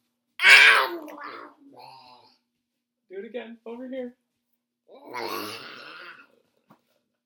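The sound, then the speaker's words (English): A child growls out harsh, gobbling munching noises imitating Sesame Street's Cookie Monster eating cookies, two loud noisy bursts separated by a brief spoken prompt from another voice. “All right, can you tell the audience what it sounds like when Cookie Monster eats the cookies?”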